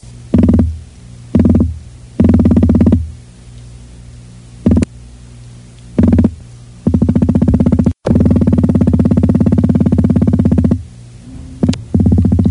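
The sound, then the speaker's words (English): Atlantic croaker fish drumming, in a 1962 recording made by scientists from the University of Rhode Island: low, buzzy thumping bursts, some short and some stretched into long rapid pulsing runs, rising loudly over a quiet hiss with no one speaking. “That was the recording of a fish, if you can believe it. And specifically, the Atlantic croaker fish.”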